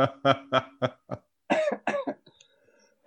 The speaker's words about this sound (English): I'm coughing like a bitch.